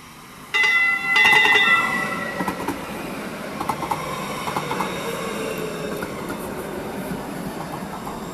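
A light rail train rolls into a station, starting with a sudden loud rush and a brief high wheel squeal, then a steady rumble with scattered clacks. Nobody speaks.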